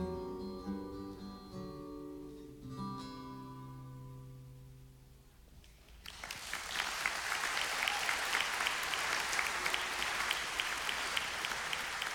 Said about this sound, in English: Now you're clapping because you forgot to role play. You're clapping because you hear that and you're like, wow, that's powerful. That's intense.